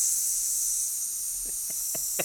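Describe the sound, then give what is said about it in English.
A voice imitates the steady hiss of a car tyre losing air, heard on getting out of the car early in the morning: one continuous, bright, airy hiss lasting about two seconds, with a few faint soft clicks toward the end. “And then I looked down and like the tyre just looked, it was like pancaking a little bit.”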